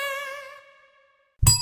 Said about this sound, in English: Hey. I've got a hotel reception bell.